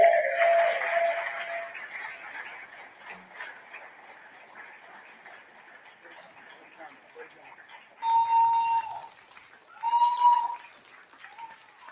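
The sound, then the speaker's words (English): Audience applause for a speaker who has just finished a talk, a dense patter of many hands that starts loud and gradually thins out, with two short bell-like chime tones sounding over it near the end. “we'll give her one more round of applause, visual and aural, A-U-R-A-L, aural.”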